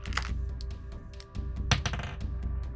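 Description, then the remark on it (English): Small damage dice rolled in a tabletop game clatter and click against a hard tabletop in a quick, irregular burst of sharp knocks, with a low background hum and no one talking. “Let me pick out my damage dice.”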